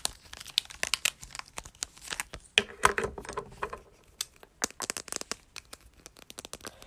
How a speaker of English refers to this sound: Let's do the outline with this black bold marker. The scent is really strong.